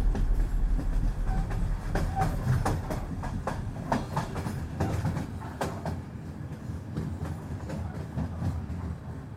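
A train rolls steadily along the tracks, a constant low rumble broken by sharp, irregular metallic clacks and squeals from the wheels, fairly loud, with no voices.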